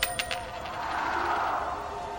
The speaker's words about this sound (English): Hey, why'd you do that? I had that other quarter standing up all day, and nobody knocked it over till now.